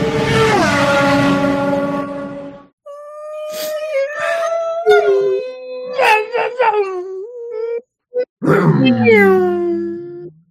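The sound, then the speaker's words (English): High-revving V8 racing engines scream loudly, their whining pitch climbing and dropping sharply with each gear change across several bursts, with brief cutouts near the end and no talking. “Oh, it was so good to listen to some of those high revving V8s, right?”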